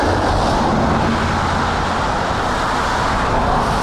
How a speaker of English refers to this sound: Cars that are too big and move too fast.